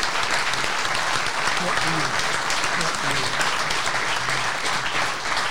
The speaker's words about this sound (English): Everyone's going to give these people a standing ovation because this is no joke. They have come from New York and Denver for this event.